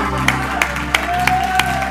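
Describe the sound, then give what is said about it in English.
An audience claps their hands together in a steady, even rhythm, about three claps per second, in praise to the Lord during a church service, over sustained organ-like music and a faint murmur of voices. “Oh, clap your hands one more time unto the Lord.”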